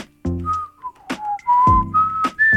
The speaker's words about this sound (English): Oh, you're good. You could do whole songs. Oh, I can do a song and a whistle, yeah.